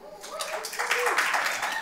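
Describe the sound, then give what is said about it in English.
An audience at Christ Walk Church breaks into applause after the pastor mentions his six months there, a dense, steady wash of clapping that swells quickly after a brief voiced sound and carries on through to the end. “I didn't say that to get an applause, but I mean, you know, I'll take it.”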